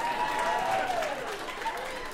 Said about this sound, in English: Yeah, clap it up if you like your roommate. Yeah.